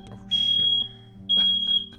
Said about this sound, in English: There's a fire alarm in this. Oh no. Oh my god. And there appears to be a fire alarm going off.